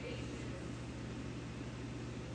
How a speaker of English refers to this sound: The air conditioner's on.